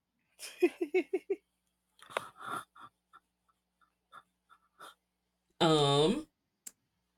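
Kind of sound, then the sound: food or drink, sipping flavored water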